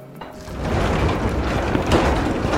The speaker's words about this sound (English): I always love a good garage door opening. I can see it's like dark and the light comes in.